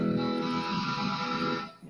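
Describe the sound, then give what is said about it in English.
A sharp, heavily distorted guitar tone from a setting in the distortion section of an effects unit rings out loud and steady, bright and buzzy with a gritty edge, holding for nearly two seconds before cutting off abruptly. “But I'm in the distortion section now, I think, making a really sharp sounding.”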